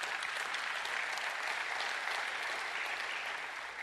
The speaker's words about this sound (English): Feel free to clap.